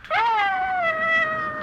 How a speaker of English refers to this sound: Stop it, Ranger. You hear? Confound it. What's gotten into that dog? Now, stop it, Ranger.